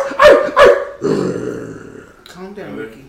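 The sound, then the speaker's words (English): A voice imitates a dog: two sharp, loud barks in quick succession, then a long, rough growl that trails off into a shorter gruff snarl, forceful. “You want to be on the podcast? Get at me, dog.”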